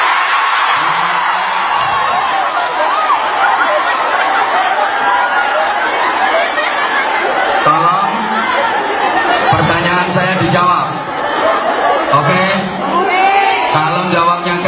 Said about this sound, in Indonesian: Sebelum dilanjut, ini Pak Dubes, begitu saya berdiri, sontak semuanya sorak tepuk tangan.